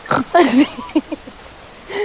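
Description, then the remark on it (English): A voice imitates a pig, making a couple of louder snorting sounds followed by a quick series of short, nasal oinks, fairly clear, with nothing else in the background. “¿Y cómo habláis? Oink, oink, oink. ¿Así?”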